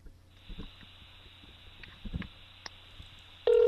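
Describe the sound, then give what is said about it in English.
A quiet, hissy phone line during a Skype call with a few soft clicks, then a loud, steady mid-pitched call-waiting beep cuts in abruptly at the very end. No one speaks. “Oh, wait, no, somebody's beeping through.”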